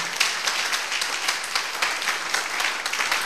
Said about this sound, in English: Clap your hands. Awesome.